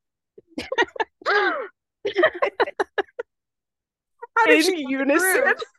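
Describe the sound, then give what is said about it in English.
A voice acts out a shocked collective gasp, imitating a crowd all gasping in unison: several short clipped vocal bursts, then a long, loud, wavering vocalized intake of breath near the end. “in unison they all gasped.”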